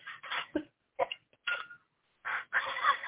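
Clucking and squawking from a group of chickens, coming in irregular bursts with short pauses between, growing busier and overlapping toward the end. Fairly loud, with no talking.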